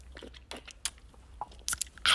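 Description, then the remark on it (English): Someone takes a sip of a drink: a handful of quiet, irregular slurping and mouth noises ending in a louder, wet burst, with no talking. “I'm gonna take a sip real quick, hold on.”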